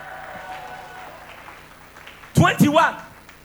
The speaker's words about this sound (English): Give Jesus a clap of hand and a shout.